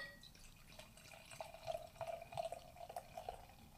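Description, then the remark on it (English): Beer from a 500 ml bottle is poured into a glass, a steady bubbly gurgle with quick glugging pulses that build slightly, heard on its own at a fairly soft level. “Let's pour this beer. Yeah. Just get the beer in the glass.”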